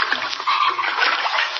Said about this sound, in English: Water. Basement floor covered with water. Can't get out.